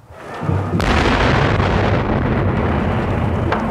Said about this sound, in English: It had gotten so hot up in the booth that, you know, one of the old steel beams exploded, and it was like a bomb went off.